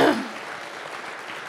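audience applause

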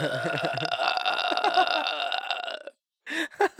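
long burp

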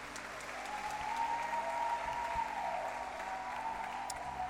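audience hand clapping

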